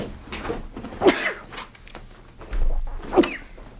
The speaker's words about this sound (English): excuse me. Whew. Sneeze. Whew. There we go.